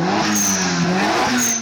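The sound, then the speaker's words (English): A 150cc motorcycle engine revs loudly, its buzzing whine climbing in pitch, dipping, then surging upward again over about a second and a half, with no voices. “That was my Yay. 150cc.”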